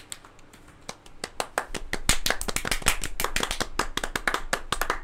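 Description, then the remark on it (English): Audience applause: a burst of many hands clapping that starts sparse, swells quickly into dense, steady clapping and stays loud to the end, with no voices heard. “Hold your applause.”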